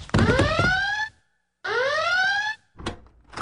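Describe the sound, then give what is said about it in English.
An electronic alarm goes off with two loud, rising whooping tones separated by a brief pause, followed by a short clattering thump. “Your alarm went off”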